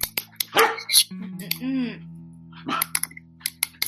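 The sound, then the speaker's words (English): A dog barks in several sharp bursts, with a longer whining bark in the middle, while a person talks over parts of it. “Well, my dog just hates me sitting in my chair for some reason.”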